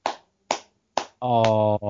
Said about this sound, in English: You better mean that clap. I do mean it.